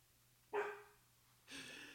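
A dog barks twice in the background, about a second apart, each bark short and sharp with a slight rasp, fairly quiet against a low background hum, with no one speaking.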